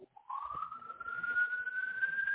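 A police siren wails, its single tone sweeping steadily upward in pitch and holding loud and continuous over a faint rumble, with no voices.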